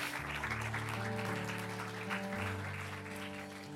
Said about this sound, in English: Come on, let's clap our hands and give God some praise right now.